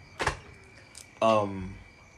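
A door opens: a brief knock or latch click, then a loud, tonal creak that slides downward in pitch and fades out over about half a second.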